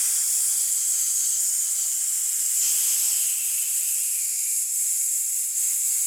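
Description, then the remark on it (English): A person's vocal sound-effect imitation of a slithering snake's hiss, steady and airy, holding loud and unbroken for about six seconds with only a brief flicker partway through. No speech is heard. “I'm a slithering snake, you guys.”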